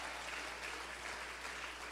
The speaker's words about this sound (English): We're going to clap our hands and thank God for that.